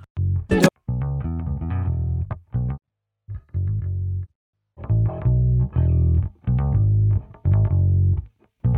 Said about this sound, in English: Now, this is just a bass DI, so I'm going to add an amp simulator to get a little bit of harmonic content in there. So let's try just the stock VST bass amp. This is with ….